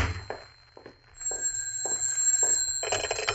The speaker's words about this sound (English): Oh, and there's my phone. Now what?